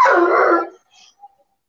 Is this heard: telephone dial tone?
no